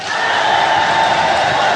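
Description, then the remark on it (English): A crowd of about 2,000 inmates at a concert at Folsom Prison on January 13, 1968, cheers and roars loudly and steadily, a dense wall of shouting voices with no individual words standing out. “At Folsom Prison on January 13, 1968, an MC asked the crowd of 2,000 felons to hold their applause until after the star of the show introduced himself.”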